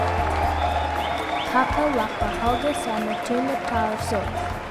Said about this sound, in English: I can hear them cheer.